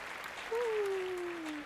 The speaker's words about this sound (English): Round of applause for these gentlemen for just creating timeless fire.